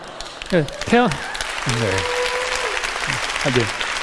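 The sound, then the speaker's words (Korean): A crowd applauds steadily, a dense wash of clapping that lasts throughout, while a man's voice speaks and laughs over it in short bursts. “제가 여러분 할 얘기가 많아서 박수 칠 시간이 없어요 지금.”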